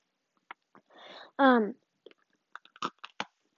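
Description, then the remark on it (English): Crunching of an Oreo cookie being eaten: several sharp, dry crunches spread over a few seconds, with a brief breathy rush and a short voiced murmur in between. “Sorry, another Oreo crunch.”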